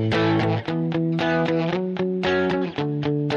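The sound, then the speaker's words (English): An electric guitar, fairly loud, strums through a chord progression, changing chords every half second or so, with a slightly overdriven tone and no voices. “That's how you learn how chords are related and how they fit together to play common progressions like, 1, 4, 5. Or, drop the pick.”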